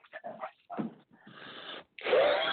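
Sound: cough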